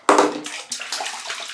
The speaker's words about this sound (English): So anyways, I'm soaping up here, ladies and gentlemen.